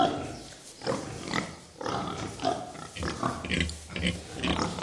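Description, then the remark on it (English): Pigs grunting and squealing in a noisy, continuous, busy chorus, with overlapping loud squeals and rough grunts filling the whole stretch. “And at number one, the loudest farm animal.”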